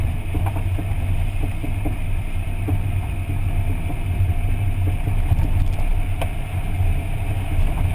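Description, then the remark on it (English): A steady, low vehicle rumble runs throughout, with scattered metallic clinks and rattles breaking through irregularly, like loose coins tumbling in a dryer, coming from a car's wheels. “So if you can identify a sound that's reminiscent of coins in the dryer, they're usually coming from your wheels, and it's a strong possibility that your lug nuts or bolts might be improperly torqued.”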